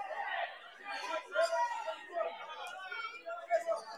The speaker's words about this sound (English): It is a very loud gym. Not an overly large crowd, but it is loud.